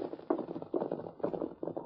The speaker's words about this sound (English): It's a kid on a white horse. He's stopping here.